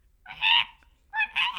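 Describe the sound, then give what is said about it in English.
A person's voice imitates a fisher cat's call with shrill, honking screeches: one drawn-out cry, a pause, then two quick screeches in a row. It is fairly loud, with no other talking. “Anyway, they played the noise of the fisher cat, and it sounds like, if I can mimic it.”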